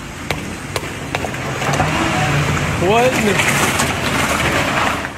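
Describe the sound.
A stolen car's engine revs hard and accelerates as the suspect tries to get away from RCMP officers outside a Mr. Lube in Kamloops, the vehicle slamming into several others; pitch climbs sharply midway, with a few sharp knocks early on and a voice briefly calling out over the noise.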